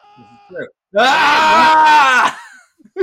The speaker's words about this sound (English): Scream loud enough.